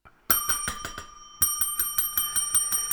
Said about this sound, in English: Oh, that bell signals, my friends. I'm sorry, we have to wrap up the conversation because it's time to play our game.